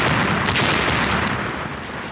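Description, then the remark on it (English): Loud, continuous booming roar of underwater depth charge explosions, a sharp blast near the start giving way to a dense, rumbling wash of detonations with no voices. “But you know what does work? Death charges.”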